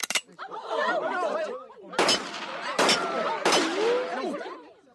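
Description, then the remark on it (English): Four sharp gunshots crack out against a bulletproof glass window, one alone and then three in a quicker run, each ringing briefly off the glass without shattering it, over a steady murmur of chatter and warbling tones. “Damn it, this glass is bulletproof.”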